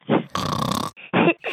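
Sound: imitated snoring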